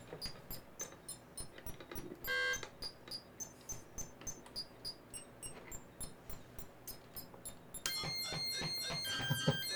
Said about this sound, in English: What did you just do? I flipped it from high to low. Oh, wow. It's pacemaker sound.